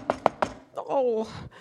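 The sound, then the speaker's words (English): Three quick, firm knocks on a wooden cottage door, evenly spaced, as the wolf knocks in a telling of the Little Red Cap story, followed right away by a voice calling out. “He knocked on the door.”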